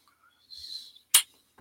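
A single sneeze: a soft, breathy intake followed by one sharp, explosive burst, clear, with no talking around it.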